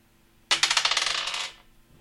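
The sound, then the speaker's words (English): Dice clatter across a hard table in a quick burst of bright, rattling hits that speed up and fade out within about a second. Fairly loud, with no talking. “To attack is you get advantage, so you roll both dice, take the best one.”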